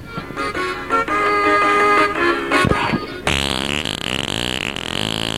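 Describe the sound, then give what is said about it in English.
A long, loud, buzzy fart, attributed to the character Leo the Farting Leprechaun, stretches on for several seconds, its pitch wobbling and shifting partway through, with no talking. “Oh, I think I shit me drawers.”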